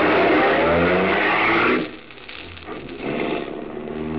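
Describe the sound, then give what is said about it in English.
A car engine roars loudly, then drops off sharply before building again as the vehicle accelerates away, with no voices present. “run to your car, tell Helene the good news, and step on the gas”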